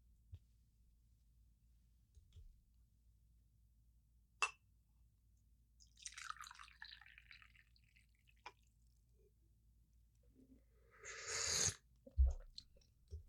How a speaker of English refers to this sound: But first, let me sip my tea, little bunny. I already gave away what it was. One second.